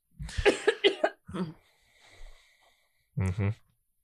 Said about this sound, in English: That cough that you just did didn't do nothing. Okay? We've talked about this. You coughed into You coughed into the little fist.